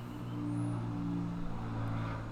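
A steady, rumbling engine drone of an airplane flying overhead, with strong low humming tones holding evenly throughout. No one speaks.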